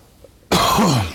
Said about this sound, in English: Excuse me, I'm going to cough.